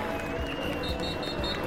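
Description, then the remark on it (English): A roadside crowd at a cycling stage finish on a climb cheers in a dense, steady roar with no pauses as Jonas Vingegaard arrives for the stage win and yellow jersey, while a few short, high-pitched tones repeat over the noise in a quick, even rhythm. “And you can hear the crowd going crazy up here.”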